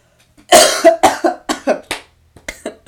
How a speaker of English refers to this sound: ew, wait, one second, I need a cough.